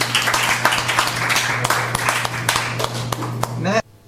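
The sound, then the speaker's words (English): The audience at the November 6th open mic reading at the Elm Cafe, an event in CFRC's 13th annual funding drive, applauds a reader steadily for almost four seconds, a dense crackle of many hands with a low hum underneath, then the clapping cuts off abruptly. “let's give another hand.”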